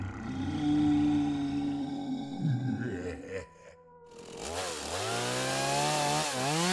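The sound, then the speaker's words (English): A chainsaw runs loud, idling roughly before a brief lull, then revs up in several rising, whining surges. No one speaks. “It was filthy with monsters, zombies, vampires, werewolves, and chainsaw-wielding maniacs.”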